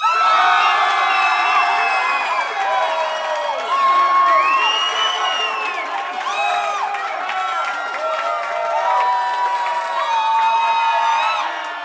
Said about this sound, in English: As your song ends, silence covers the audience. And then slowly but surely, it turns into a raucous cheer.